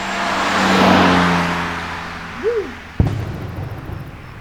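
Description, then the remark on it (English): A pickup truck, loaded with explosives and with a brick on its pedal, roars and accelerates, its engine swelling loudly before fading away, followed by a brief sharp knock and quieter background noise. “So we grabbed a pickup truck and sucked two dead zombies in it.”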